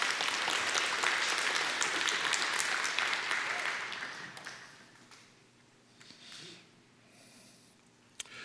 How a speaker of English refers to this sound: What's your response been, being at church? Do you like it? Yes. Just clap.